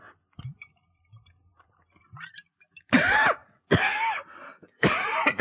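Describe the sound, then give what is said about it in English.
Faint swallowing and clicking sounds give way to three loud, harsh, sputtering coughs in close succession, as a man chokes on a swig of homemade whiskey from a jug that went down the wrong way. “Oh, my, you swallowed wrong, huh?”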